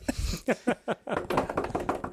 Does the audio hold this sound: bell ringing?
no